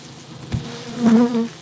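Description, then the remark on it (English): Agitated honeybees buzz in a standard bee box hive that has just been cracked open, a steady droning hum that swells louder midway, with a brief sharp knock near the start. “So this is the noise they do when they're not happy. So see, right now I just cracked the hive.”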